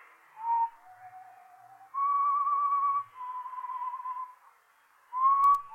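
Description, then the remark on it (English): A person whistles a slow tune in clear, sustained notes, pausing briefly between phrases. The melody is moderately loud, with no one talking. “But I heard that whistling again. That same tune.”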